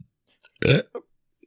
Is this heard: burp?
yes